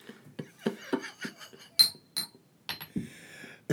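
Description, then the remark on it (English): Shot glasses of mezcal clink together in a toast, a few sharp, bright taps with a short ringing tail, over low murmuring and handling noise in the background. “Well, let's do our mezcal shot.”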